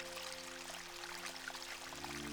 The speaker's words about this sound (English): You are sitting by a babbling brook.